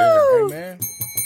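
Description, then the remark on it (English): A handheld bell rings three quick times near the end, each strike leaving a bright, steady metallic tone, right after a voice with a falling, sliding pitch. “Give me this bell. Take it away. Don't you take that bell away from me.”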